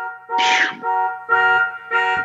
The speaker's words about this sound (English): I want to hear two beeps, like car beeps.